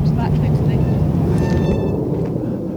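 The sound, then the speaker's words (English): A military transport jet from RAF Brize Norton roars overhead in Witney, England, a loud, sustained low rumble with a faint high engine whine that begins to ease slightly near the end. “The noise of that military transport jet from RAF Bryce Norton made the place sound like Heathrow, but it's gone now.”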